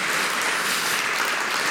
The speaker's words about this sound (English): Come on, let's give God a hand clap for his graciousness that he takes us back no matter what he does.